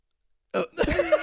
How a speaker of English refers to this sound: You're choking there for a second.